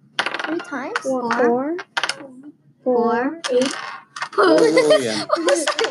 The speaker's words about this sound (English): Ah, roll that three times. This? The yellow dice, three times.